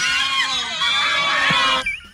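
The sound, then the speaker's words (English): A crowd of passengers screaming together in reaction, loud, overlapping shrieks that hold steadily for almost two seconds, then abruptly thin out and fade. “Can we hear the reaction of the crowd?”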